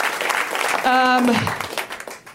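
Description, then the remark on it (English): A show audience claps steadily throughout, a dense wash of applause, with a single voice letting out a loud cheer in the middle that slides down in pitch before the clapping tapers off. “Huge round of applause for everybody.”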